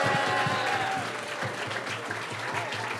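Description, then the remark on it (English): An audience applauds steadily for a few seconds for guest Lance Bangs, dense clapping forming a loud, continuous wash with scattered cheers and whoops mixed in. “Give it up, ladies and gentlemen, for Lance Bangs. Woo! Make some noise for Lance Bangs.”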